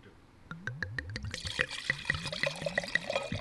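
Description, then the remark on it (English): Wine glugging out of a bottle into glasses, a quick rhythmic series of gurgles with a bright splashing fill underneath, clear with no talking. “Oh, stereo pours, man. Healthy country club pours over there”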